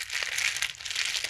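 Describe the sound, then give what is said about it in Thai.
The plastic wrapper of a skeleton-shaped pen, given as a small prize, crinkles: a busy, continuous rustle of small crackles with a few sharper bursts, and no voices at all. “เป็นรางวัลเล็กๆแหละอ่ะเราให้ฟังเสียงนี่คือเสียงของรางวัลเรา”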